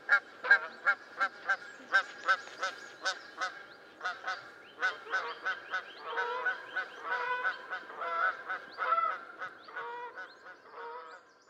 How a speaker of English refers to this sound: In terms of calls, cackling geese are a bit squeakier. Compared to the Canada goose's distinctive honk.